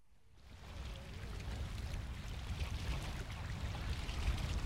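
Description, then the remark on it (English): Open water of Hanningfield Reservoir, a man-made reservoir filled from the Rivers Blackwater and Chelmer, lapping and washing steadily outdoors, with a low wind-like rumble underneath; the wash fades in quickly and stays continuous and moderately loud, with no voices. “Well, behind me is Hanningfield Reservoir. It's a man-made reservoir and it's filled up from the River Blackwater and Chelmer.”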